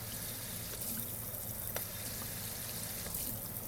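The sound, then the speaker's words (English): A spray gun on a normal sink sprays water at high pressure, producing a steady, hissing rush that holds constant throughout without pause or speech. “That's the spray water pressure.”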